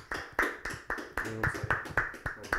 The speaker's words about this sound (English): Everybody give me a clap for her.